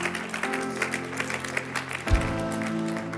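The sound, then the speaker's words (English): A crowd claps steadily in a dense, crackling wash of applause, and a low sustained musical chord swells in beneath it partway through. “You can clap for that, somebody.”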